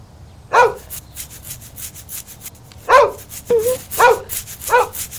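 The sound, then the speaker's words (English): A dog lets out about five short, grumbly barks at irregular intervals, fairly loud, with a soft rustling, rubbing noise underneath and no one talking. “Is that what he just said?”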